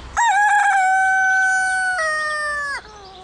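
A single loud rooster crow rings out, one long drawn-out cock-a-doodle-doo with a strained rising break near the end before cutting off abruptly.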